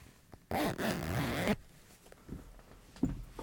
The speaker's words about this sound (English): While you do that, I'll just zip this clutch closed again.